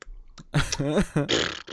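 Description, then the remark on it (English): Someone makes a few short voiced noises, then blows a sputtering raspberry with their lips, a buzzy, wet fart imitation lasting under a second. “You got the fart lips eventually.”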